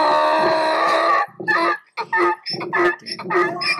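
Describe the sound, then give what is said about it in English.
A donkey bray sound effect given to the Giants: a loud, long drawn-out harsh tone breaking into a series of rapid, rasping hee-haw gasps. “You get the donkey, though.”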